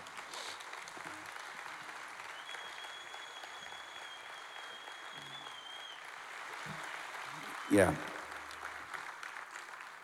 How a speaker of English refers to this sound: that deserves an applause. Not my playing, but what she did, man.